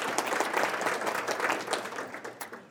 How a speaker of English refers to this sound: So a round of applause for everyone who's part of GOTS. Thank you.